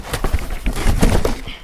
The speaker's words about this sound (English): His sort of method champenois that aren't disgorged. Mm, yeah. And a crown cap. Ah! There's gonna be this loud thumping noise on the mic as, Okay, here, why don't we...